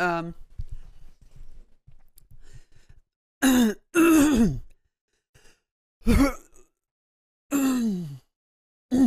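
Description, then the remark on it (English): A person clears their throat, starting with a low rumbling rasp, then several loud, drawn-out guttural pushes separated by short pauses, with no talking. “Just clear my throat, and then I'll say something funny.”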